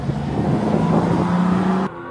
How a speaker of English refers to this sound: It's now time for what many passengers say is one of the highlights of their trips, go-kart racing. This track, the racetrack, spans three different decks. These babies go up to 25 miles an hour on the track.